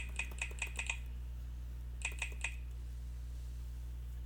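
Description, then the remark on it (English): Quick bursts of crisp clicks on a laptop keyboard, first a run of about five taps, a pause, then three more, fairly quiet over a steady low electrical hum. “That keyboard sounds beautiful.”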